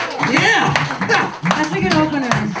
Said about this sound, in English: Round of applause for free balling in this weather.